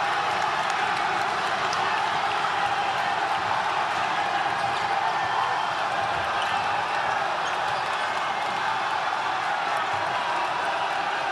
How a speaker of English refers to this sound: Here's Paulus driving in. There you go. The crowd goes ballistic.